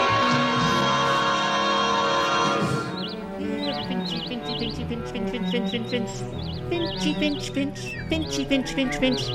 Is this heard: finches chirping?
yes